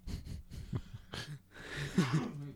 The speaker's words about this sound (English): Bless you.